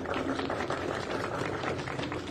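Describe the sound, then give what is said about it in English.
An audience applauds steadily, a dense wash of many hands clapping at once, loud and even throughout with no voices standing out, as the President and CEO of the Jewish Federation of Milwaukee is introduced at an event standing with the people of Ukraine in Milwaukee. “I don't deserve the applause.”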